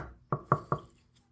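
Three sharp knocks on a house's front door in Virginia in a quick, even rhythm, each with a short woody resonance, fairly loud, with quiet room tone between them.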